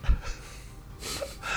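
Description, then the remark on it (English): Two airy sniffs through the nose from someone with a cold, a short one at the start and a longer, breathier one after a pause, with no talking. “I must apologise for my sniffing.”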